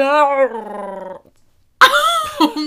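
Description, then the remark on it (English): A small female dog named Yachty makes a drawn-out, tonal growling whine that wavers in pitch, pauses briefly, then lets out sharp, higher yips. It is loud, with no talking over it. “This one right here, little Yachty right here, she will go absolutely ape shit.”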